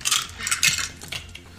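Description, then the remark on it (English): Two dice clatter and tumble across a hard table during a tabletop game roll, a quick run of bright clicking rattles over about a second and a half, with no voices. “Two more dice. I got it.”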